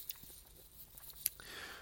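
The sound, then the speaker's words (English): Someone sips coffee: a few quiet wet mouth clicks and smacks, then a soft, airy slurp toward the end, with no talking. “Excuse me, let me sip my coffee here.”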